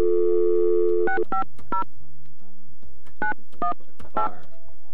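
A steady dial tone hums for about a second, then cuts off as a series of short touch-tone beeps punch in a phone number to call someone in the morning, three quick tones, a pause, then three more.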